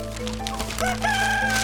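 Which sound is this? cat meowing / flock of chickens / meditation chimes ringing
flock of chickens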